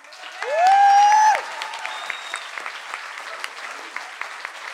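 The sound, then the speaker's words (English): An audience applauds steadily after a speaker finishes telling a story, the dense patter of many hands carrying through to the end, while a loud, sustained rising whistle cuts through at the start. “Okay, big round of applause”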